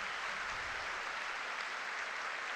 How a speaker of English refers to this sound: And the deacons will now make their way. They made it from the congregation. Now they're going to be sitting with their brother deacons, except for the two that will be flanking the bishop. And rousing applause.